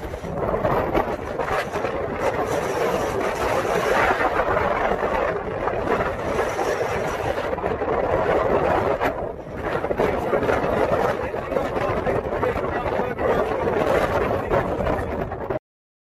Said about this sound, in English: Listen to those waves, the wind going on. A pretty gnarly wave too.